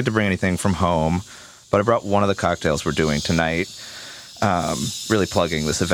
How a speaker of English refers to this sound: Like, you hear this? You hear this, people? That's the sound of somebody caring. Care a lot. I am degassing a carbonated bottle of cocktail. Very slowly.